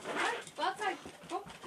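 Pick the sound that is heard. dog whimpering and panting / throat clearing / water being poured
dog whimpering and panting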